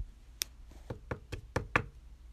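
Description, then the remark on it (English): A series of about seven sharp, fairly loud knocks on a door, in an uneven rhythm that speeds up toward the end, with no one speaking. “She just came back downstairs with all that on when I heard a knock on my door.”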